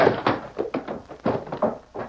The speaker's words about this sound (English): Masked man, he's gone. You let him throw that chair at you and run out of the door.